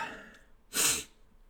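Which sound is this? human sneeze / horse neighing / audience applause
human sneeze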